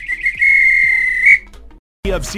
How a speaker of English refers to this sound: If this were a real bit of extra time, this is when the ref would blow the whistle because it's finished.